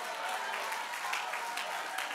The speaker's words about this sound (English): I wonder if somebody right now would move by faith and begin to stand to your feet, clap your hands, and give God a measure of praise.